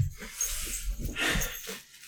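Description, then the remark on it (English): A dog plays with a noisy egg-shaped toy, producing a busy run of rattling, clattering bursts for about two seconds, with no one speaking. “I just think it's funny that the dog picked the egg. Yeah. Out of the basket. And the loudest. The noisiest toy.”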